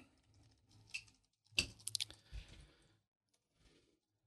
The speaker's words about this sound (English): What are you typing? Under business. That's why my computer faces away from you.